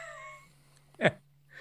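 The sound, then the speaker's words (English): A cat gives a short, sharp meow over a low steady hum, preceded by a fainter drawn-out tonal cry. No one speaks. “I've just clicked randomly further, and now he's talking to a fucking cat.”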